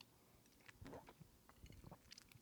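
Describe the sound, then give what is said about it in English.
A quiet sip of whiskey from a glass, followed by soft wet mouth sounds and a swallow, with no one speaking. “This is the first sip, because this is the first sip of whiskey I've had in like 2 weeks.”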